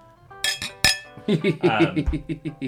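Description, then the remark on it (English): Two bright glass clinks ring out close together near the start in a toast to Trixie Mattel, followed by people talking over one another in a lively exchange. “Cheers.”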